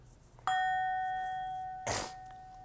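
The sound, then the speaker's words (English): A single bright bell strike rings out clearly and slowly fades, its tone sustaining over a second before a short, breathy snort briefly cuts across it. “Let me ring the bell for that one.”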